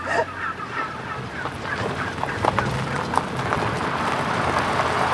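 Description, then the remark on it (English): A large flock of about 1,000 heritage breed wild turkeys, escaped after breaking through an electric fence, gobbles and clucks continuously, many birds calling over one another in a dense, noisy chorus with scattered sharper calls standing out. “The turkeys have escaped.”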